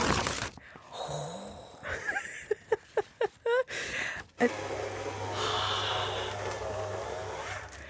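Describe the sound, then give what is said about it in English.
A short series of crackling paper bursts is followed by a paper shredder motor kicking in, with a steady low hum and a continuous grinding rush as a sheet of black A3 paper is fed through, fairly loud. “Black paper through the shredder.”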